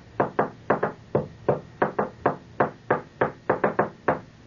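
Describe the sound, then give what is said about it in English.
A pencil bangs on a desk in a classroom in a quick, uneven series of about fourteen sharp, woody taps, some in fast doubles, each clear and fairly loud with a short ringing tail, echoing around the room. “He's banging his pencil, see?”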